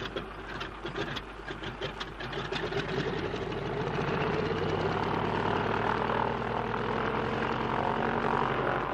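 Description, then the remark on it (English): Stone-cold aircraft engines sputter into life with uneven chugging, then build to a steady, loud mechanical roar as they rev up, droning with no voices. “And if only your engines don't seize, they're stone cold”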